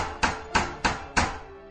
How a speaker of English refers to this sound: Just then, they heard a knock at the door.